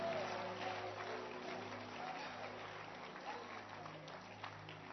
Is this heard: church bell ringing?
no